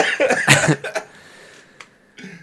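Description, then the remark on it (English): A man coughs with a tissue over his nose: a harsh cough bursts out in a quick cluster of two or three explosive hacks, followed by a short rough tail and a faint throaty sound near the end. “He put the tissue over his nose and then coughed.”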